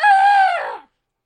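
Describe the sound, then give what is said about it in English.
During a comic reading of Hansel and Gretel, a person imitates a crow with a single loud, drawn-out caw, its pitch holding steady, then sliding down before it cuts off. No other sounds or talking follow. “When the moon came, they set out, but they found no crumbs, for the many thousands of birds which fly about in the woods and fields had picked them all up. Crow!”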